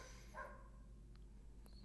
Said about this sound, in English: I have two German Shepherd dogs living behind my apartment building. And they're very cute, but they're always outside and very noisy.